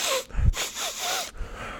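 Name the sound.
voice imitating loud sniffing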